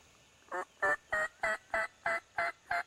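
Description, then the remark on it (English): Wild turkeys gobble in a quick, rattling run of about eight evenly spaced notes, heard in the woods in the morning during turkey hunting season, about 500 to 600 yards away, clear against a quiet outdoor background, with no one talking. “We were a little late getting into the woods that morning, but by the time we sat down, we had birds gobbling.”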